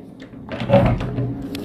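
A door swings open with a short creak and clunk of the handle and frame, moderately loud, fading into quiet afterward; the door is opened to let a lizard go outside.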